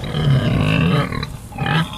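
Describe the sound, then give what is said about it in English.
Loud, deep grunting snorts from pigs, a rough continuous burst followed by a short pause and another throaty grunt, with no talking. “So the question is, are those pigs happy?”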